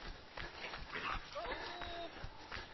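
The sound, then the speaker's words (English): Dogs whimper and yip, with high whining cries rising and falling over a steady noisy background for a few seconds. “You've got attacked by some dogs.”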